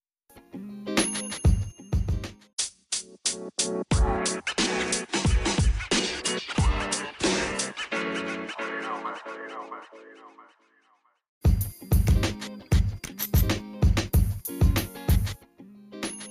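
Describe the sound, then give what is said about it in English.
A hip-hop track plays loudly during a music break, with punchy, repeating drum hits and bright, ringing synth tones, cutting out briefly to near silence before the beat slams back in. “Let's go ahead and take another music break.”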